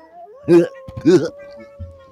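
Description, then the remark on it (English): A person imitates a wolf howl with two short, rising-and-falling vocal cries in quick succession, fairly loud, over a faint steady hum, howling for Worldwide Howl at the Moon Night. “That's right, Taiwan on, and just howl like you've never howled before.”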